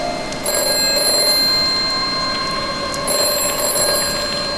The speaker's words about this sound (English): Don't answer that phone!